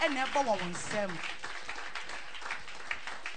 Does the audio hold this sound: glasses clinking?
no